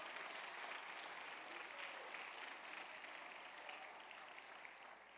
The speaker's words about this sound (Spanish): Alguien dele palmas al Rey de Reyes y Señor de Señores.